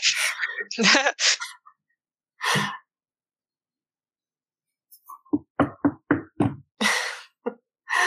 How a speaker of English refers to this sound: And to your surprise, something does. So there is a knock on the door.